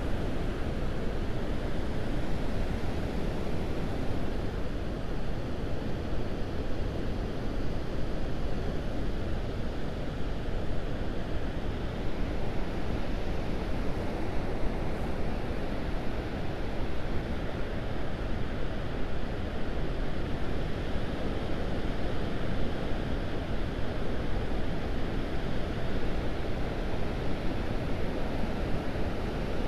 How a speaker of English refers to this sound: So let's pause for a moment to hear the dull roar of the ocean. I'm hoping you guys can hear that anyway.